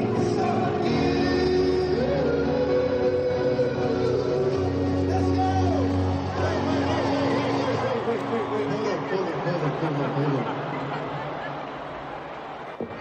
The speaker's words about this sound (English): So there's some confused reactions there from the crowd, some laughter. You could also hear almost like the swell and the crescendo of anticipation. Everyone was waiting for this moment.